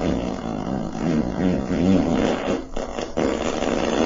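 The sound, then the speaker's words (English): A long, drawn-out fart sound effect played by the Extreme Farts voice-assistant app rumbles for about four seconds, low and buzzy with a wavering, sputtering pitch and steady loudness throughout, with no talking over it. “That was a long one.”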